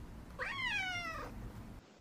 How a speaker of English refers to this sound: I also just got some really good little tiny shadow screaming, like his little meow screams. So maybe I'll put that in there as a little placeholder, too.